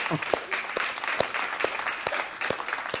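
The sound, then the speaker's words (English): An audience claps together in a dense, steady burst of applause, with a few sharper individual claps standing out from the continuous wash of hand-clapping. “One claps, everybody claps, right?”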